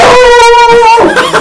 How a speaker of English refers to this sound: And don't mind the dog. That's Tank. It's Tank.